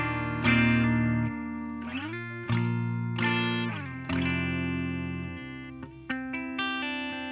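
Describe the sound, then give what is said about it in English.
A clean electric guitar plays sustained chords through effects, each strum ringing out with a soft attack and lingering shimmer, followed by a few quicker plucked notes near the end. “We've got our clean tone.”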